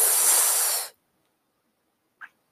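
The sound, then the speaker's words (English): A loud, breathy hiss of air as High West whiskey is sipped, like a slurping sip or a sharp exhale, lasts nearly a second. Silence follows, then one brief, soft mouth click. No one speaks. “Let me get a sip of this High West here.”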